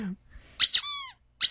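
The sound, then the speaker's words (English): A squeaky toy squeezed several times: loud, shrill bursts of squeaking, including one drawn-out squeal that slides downward in pitch before trailing off, then another sharp squeak after a brief pause. “Kayla's over there playing with her little toy.”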